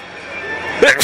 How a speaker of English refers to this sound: I'm sneezing. Gesundheit. That's staying in. We're not editing that. That's a Rock and Shock sneeze.